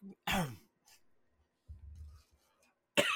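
A person coughs sharply and loudly twice, with a short gap between, followed by a low rumbling throat sound before a final hard cough at the end.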